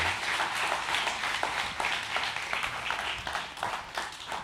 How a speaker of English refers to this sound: Hey, can you guys give Jake a round of applause this morning? Thank you, Jake.